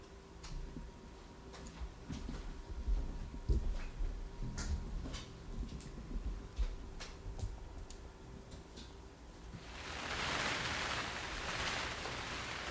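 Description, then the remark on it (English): Rain heard through glassless windows at a monastery: scattered raindrops tap and click irregularly at first, then a steady, hissing wash of heavier rain swells in toward the end. No one speaks. “Ah, it's kind of nice hearing the rain through these glassless windows at this monastery.”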